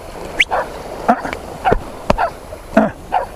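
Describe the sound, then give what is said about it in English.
A dog barks and yelps in a rapid, uneven series of short, sharp bursts while being followed by a cow, with a faint whine between them over steady outdoor background noise. “Now my dog is being followed by a cow here, which is really not, and he doesn't know what to do, and the cow doesn't know what to do.”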